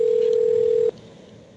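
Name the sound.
telephone dial tone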